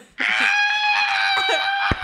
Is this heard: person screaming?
yes